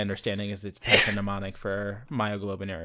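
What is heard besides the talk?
sneeze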